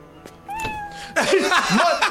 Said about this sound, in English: The cat wasn't even positioned to make noise. I already told you, bad ADR, can't stand it. They had to go in and put the ADR for the cat. Because if you look at the cat is eating. Yeah. The cat can't even make noises, really.